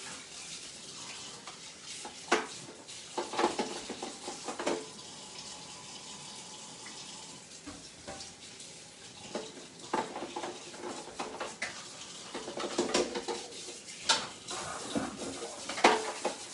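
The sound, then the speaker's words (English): Running tap water splashes over a hollow plastic microwave egg-and-muffin cooker with plastic hinges as it is washed out before first use, with uneven bursts of patter and clatter as it is turned under the stream. No talking. “All right, I'm gonna wash it out and then test this thing.”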